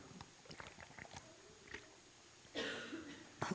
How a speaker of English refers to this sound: I'm over my cold, but this cough, goodness, I don't know if you guys have had a cough that just as lingers. It seems to be the thing.